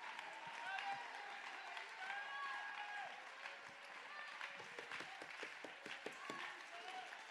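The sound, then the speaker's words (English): A church audience claps and shouts to God together, a dense wash of hand claps with excited voices and cheers rising over it, sustained and fairly loud throughout. “Somebody clap your hands and give God a good shout right now.”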